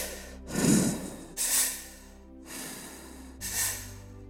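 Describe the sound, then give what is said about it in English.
Deep mouth breathing during a guided breathing exercise: two slow cycles of breathy inhales followed by heavy, airy exhales, steady and unhurried, with no talking. “We're coming back to another round of mouth breathing.”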